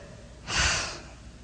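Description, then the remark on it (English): A person imitates a single deep, rasping gasp for breath, one of three deep breaths taken by a man as a medic sees he is breathing, fairly loud, rising quickly and trailing off into quiet. “and took 3 deep breaths.”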